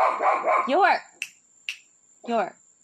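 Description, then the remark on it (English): A dog barks at a fence, giving two short barks separated by a pause, with a couple of sharp clicks in between; someone talks briefly just before the first bark. “But I love how dogs just bark at the fence.”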